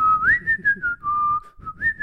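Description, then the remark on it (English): A person whistles a bouncy cartoon theme melody, clear, the pure tone gliding up and down between held notes with a soft low rumble underneath. “I believe he's whistling that second one. Also, nice whistling.”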